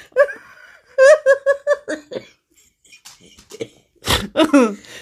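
Voiced bursts like chuckling or throaty sounds come first, then one loud, harsh cough breaks out near the end, followed by a few rough vocal sounds.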